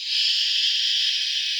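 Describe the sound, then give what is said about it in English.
A steady, continuous shushing hiss from a baby shusher device that parents use instead of shushing a child themselves, bright and breathy, holding an even loudness for the whole moment with no pauses or voices. “Oh, is that the lazy parents shusher?”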